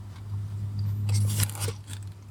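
Crunchy chewing of a battered onion ring with a pebbly coating, a quick flurry of crisp, crackling bites clustered mid-clip over a steady low hum, with no talking.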